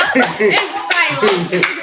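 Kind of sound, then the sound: crowd, audience clapping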